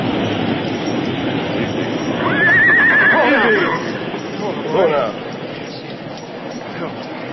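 Horses, one called Silver, neighing: a loud, wavering whinny in the middle and a shorter one soon after, with restless stamping over a constant rushing, roaring wall of floodwater, the horses standing in water about a foot deep.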